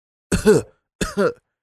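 A voice imitates a woman's two quick coughs, each a fairly loud double burst with a short pause between them, and no other talking.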